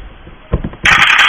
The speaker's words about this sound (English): I'm going to have you roll 2 stress dice for that.